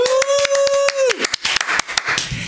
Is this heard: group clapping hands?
yes